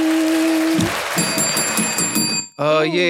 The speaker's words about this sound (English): Ooh, we'll speak on why that bell don't sound as professional as the one that I have over here.